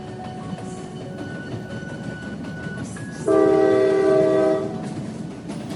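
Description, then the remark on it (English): A very long train from Manchester to London rumbles steadily along the tracks, then a loud, sustained horn blares for about a second before fading back into the rolling noise of the wheels. “After college, Jo got a job, and one day she was riding a very long train from Manchester to London.”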